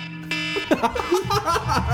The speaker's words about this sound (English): That one has to be it. Nuclear meltdown. There's like no good one, so maybe that has been my wake up alarm. It's my alarm too. Does it stress you out right now to hear it?